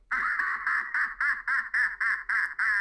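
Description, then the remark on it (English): A voice imitates a duck, making a fast, steady run of about ten nasal quacks, loud, with no talking around them. “Okay, penguin. Can you go back to the Batcave?”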